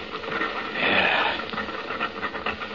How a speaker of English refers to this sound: Listen to that. It almost does sound like an elephant.